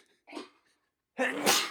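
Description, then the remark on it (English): A single loud sneeze: a short sharp inhale followed by a brief pause, then a forceful, breathy burst that trails off. No one talks over it. “I just sneezed.”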